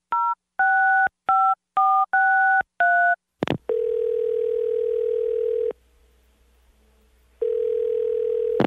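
Six quick touch-tone keypad beeps are dialed in a row as a phone call is placed, followed by a click and a steady, clear telephone tone that sounds for about two seconds, pauses, then starts again. No voices.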